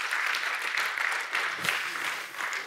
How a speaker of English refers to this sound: Come on up and give them a round of applause as they're coming.